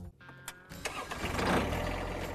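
A tractor engine cranks over and catches after a couple of sharp clicks, then settles into a loud, steady rumble that builds slightly, with no one talking.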